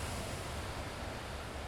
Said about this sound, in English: When I got here, the ocean seemed quite rough, but one of the interesting things about sitting and watching the ocean is you really just get used to the flow of it.